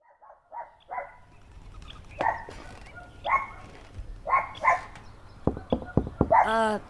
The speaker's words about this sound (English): Any chance you could get that dog to stop barking?